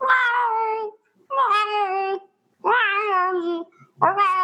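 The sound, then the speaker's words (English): A person imitates their cat meowing alone on another floor of the house, giving four long, wavering meows in quick succession with short pauses between them, loud, with no other talking. “Because whenever we're on like a different level of the house, it's like we're on a different level, and he's like alone on like one of the stories of the house, and this is how he meows.”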